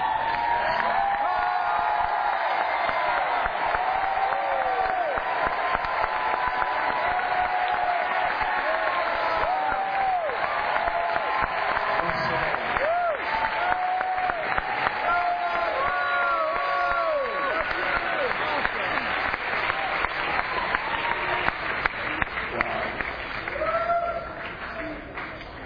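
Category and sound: crowd, audience applause and cheering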